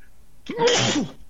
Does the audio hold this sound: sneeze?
yes